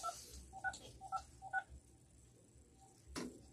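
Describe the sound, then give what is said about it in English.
Four short touch-tone beeps from a phone keypad being dialed to call someone, evenly spaced, followed after a pause by a brief click. No one speaks. “Let's see if Mr. Michael gonna answer this phone, because I be having some character sometimes.”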